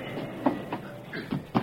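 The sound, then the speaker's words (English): A railroad car, cut loose from the train, being braked on the tracks by a man: a steady low rumble broken by four or five heavy, uneven clanks and knocks, with no voices. “Hey, what's that noise? My friend's putting the brakes on this car, son.”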